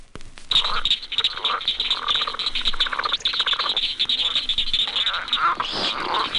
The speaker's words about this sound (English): The voice of the pig frog is much lower in pitch than that of the leopard frog, Ranipipiens.